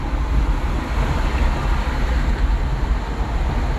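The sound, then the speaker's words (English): A steady, loud rumble of road noise from inside a moving car, deep and constant with a hiss on top, continuing without pause and no voices. “I'm just in the car and, you know, I got a lot of sports stuff coming up.”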